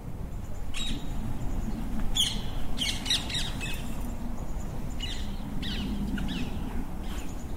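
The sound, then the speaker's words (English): Several small birds chirp and squawk in quick, overlapping bursts around a birdhouse in St Mary's Churchyard, over a steady low rumble of outdoor background noise; no one speaks. “Oh, there's a birdhouse. That's what's attracting all these birds.”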